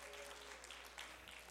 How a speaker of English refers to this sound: Clap your hands. Thank you, Jesus. Hallelujah.